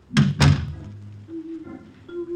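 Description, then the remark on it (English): A door shuts with two heavy thuds in quick succession, followed by a faint low hum lingering; the servants' entrance door of a large house south of Paris. “And perhaps it was Muriel herself, Celeste's personal maid, who answered the door.”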